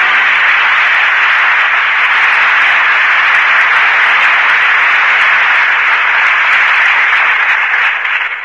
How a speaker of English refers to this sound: That applause invites the return of the two artists who gave such distinguished performances tonight. Loretta Young, whom we've presented many times before, and Orson Welles, who has made his first appearance in the Lux Radio Theater tonight.